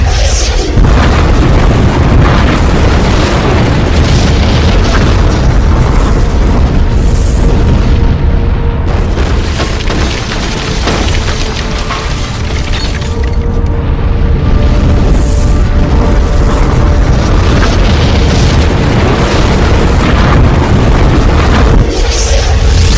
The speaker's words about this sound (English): As before, there was a brilliant explosion, and everything around us was torn to atoms.